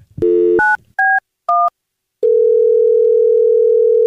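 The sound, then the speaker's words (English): A phone call being placed to a caller's daughter for a prank call: a few quick keypad beeps followed by a loud, steady electronic line tone that holds to the end, clear with no voices. “And so we're going to call her daughter right now, see if we can help her out.”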